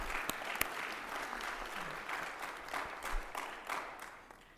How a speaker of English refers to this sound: Go ahead and clap for him, too. We'll just clap a lot.